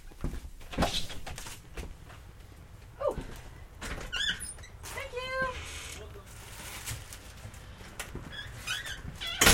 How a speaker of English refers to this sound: By the way, whenever we need like a prison door close.